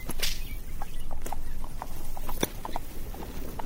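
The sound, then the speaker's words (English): Horses' hooves clip-clop in a steady, uneven rhythm as they pull a cart toward Maldon, over a constant rumbling of whining cart wheels, with one sharp crack partway through. No one speaks. “I'll mind the horses. Gee up, boys, then.”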